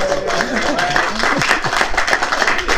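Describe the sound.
A small group claps steadily for about three seconds, the dense, uneven patter of hands staying loud throughout, with a few voices calling out underneath.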